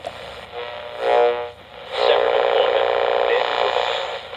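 Hissing radio static with warbling, whistling tones as a radio dial sweeps between stations, as when tuning a car radio to pick up a signal: a brief swell, a short drop, then a louder stretch of crackly noise and wavering pitches until the end.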